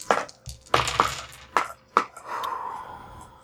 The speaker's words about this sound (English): I will roll these dice. Roll some dice.